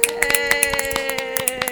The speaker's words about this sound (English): Snaps and claps.